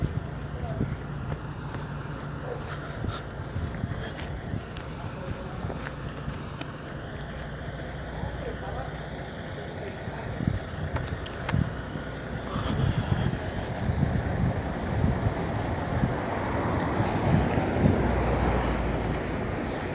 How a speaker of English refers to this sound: Well, damn, there's like 12 trucks. There's a factory. That's why they're coming by here, but I don't think they need that many trucks, do they?